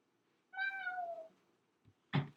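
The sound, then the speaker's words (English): A cat gives a single drawn-out meow that slides slightly downward in pitch, followed after a pause by a brief soft thump and a short noisy burst. “And okay, I'm going to tell both the cats to say bye to you.”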